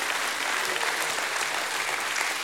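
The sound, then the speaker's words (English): An audience claps for God together in dense, steady applause that fills the whole moment without letting up, a loud wash of many hands with no single voice standing out. “Someone give God a hand clap and a shout of praise.”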